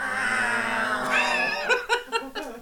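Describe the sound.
Several voices join in a drawn-out, rising imitation of a cat's meow, fairly loud, breaking into a few short bursts of laughter at the end.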